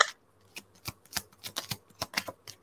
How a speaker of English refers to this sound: Because I noticed that when you're shuffling, that they're just like popping out of the deck, just like flying.